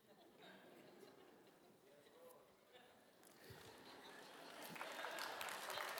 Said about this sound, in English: Single people, those are married people clapping. Welcome to the club one day.